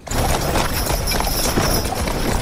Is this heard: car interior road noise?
no